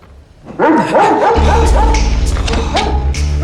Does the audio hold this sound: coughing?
no